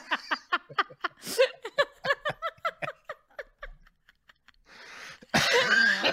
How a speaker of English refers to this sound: Oh my God, we're like dying. I'm so sorry if anybody's listening this to the audio and they just hear us laughing and coughing.